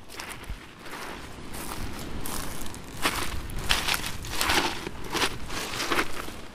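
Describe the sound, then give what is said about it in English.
Footsteps squelch and crunch over slippery, popping seaweed along the clay cliffs north of a bay under the Carnaise Peninsula, heading to a walkway, with irregular steps and crackly popping bursts throughout, moderately loud over a steady wash of background noise and no talking. “Following the clay cliffs to the north of the bay, under the Carnaise Peninsula, I tread a precarious path over slippy, popping seaweed to join the walkway, which itself has segments that have been washed away over the years.”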